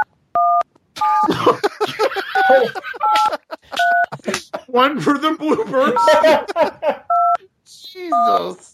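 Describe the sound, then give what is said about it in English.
Several short telephone keypad tones beep one by one at irregular intervals as a phone number is dialed to add a participant to a call, clear, some alone and others overlapping people talking and laughing. “Heard every single dial you just made.”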